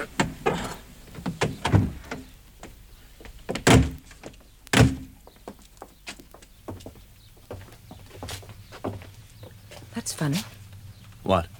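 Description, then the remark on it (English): A door is opened with several sharp knocks and thuds, a loud bang near the start and clattering movement, then a low steady hum, with scattered footsteps-like clicks. “The door's open.”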